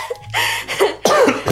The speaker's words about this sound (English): You made me cough. See?